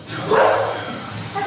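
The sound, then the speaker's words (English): A dog lets out a drawn-out, rising wail over a steady background rumble as an earthquake shakes a home in Hualien and suspended lights rattle from the ceiling, the cry swelling in the middle before fading, moderately loud. “Suspended lights rattle from the ceiling as a dog wails in the background.”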